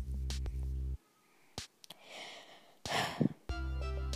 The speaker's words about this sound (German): Dieses Atmen hört sich wahrscheinlich, wenn man es sich anhört, auch immer voll komisch an, ne?